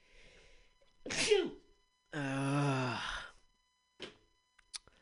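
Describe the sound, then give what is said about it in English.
A single loud, sharp sneeze bursts out, followed by a drawn-out voiced groan, then a couple of faint clicks in otherwise quiet surroundings. “If only it were as easy to get rid of a corrupt officer as it was to sneeze.”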